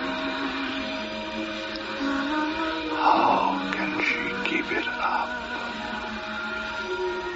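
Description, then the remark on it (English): A vacuum cleaner drones steadily and loudly from start to finish, its whirring hum unbroken, while a voice briefly speaks over the noise partway through. “I can hear her singing above the noise of the vacuum.”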